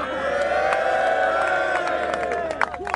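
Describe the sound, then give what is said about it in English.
A crowd listening to Andy Tate cheers appreciatively: a dense, sustained roar of many voices with rising shouts and whoops, plus a few scattered claps, staying loud throughout and swelling slightly near the end. “You can hear the crowd there, the appreciative audience.”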